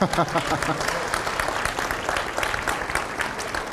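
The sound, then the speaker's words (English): A church audience at Redemption Flagstaff claps steadily after a prayer, a dense patter of many hands that holds at an even, fairly loud level throughout, with a brief bit of voice audible right at the start. “You guys should clap or something so it's not weird.”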